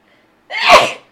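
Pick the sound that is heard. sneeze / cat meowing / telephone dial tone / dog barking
sneeze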